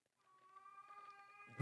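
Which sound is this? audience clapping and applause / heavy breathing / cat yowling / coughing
cat yowling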